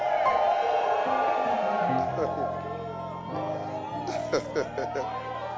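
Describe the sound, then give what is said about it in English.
An audience shouts together in a loud, sustained burst of overlapping voices, with whoops and cheers rising and falling before trailing off into scattered calls. “Thank you those who shouted.”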